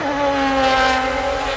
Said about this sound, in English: And I'm guilty at GR8 in Belgium of revving my Lamborghini in an indoor venue. And when I was told to stop, I stopped and it didn't happen again, but it did draw a crowd and the footage was amazing.